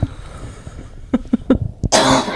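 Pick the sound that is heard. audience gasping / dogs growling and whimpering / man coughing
man coughing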